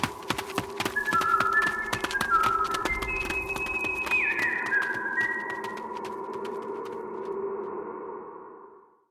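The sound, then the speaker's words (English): Someone whistles a short run of sliding, melodic notes over a busy bed of sharp, rapid clicks and a steady low hum that fades out toward the end. “… was whistling as we left, but why?”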